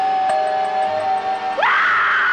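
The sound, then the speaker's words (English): An eerie, sustained wailing tone that abruptly slides upward into a shrill, piercing scream, like a horror-trailer effect of screaming souls, loud and continuous with no talking. “There's a magnificent view of hell and a pool of blood, heated by the violent energies of the still screaming dead.”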